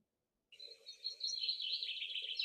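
A male common snipe sings: after a brief silence, a dense, continuous stream of rapid high chirping notes sets in and carries on steadily, fairly loud, with no voices.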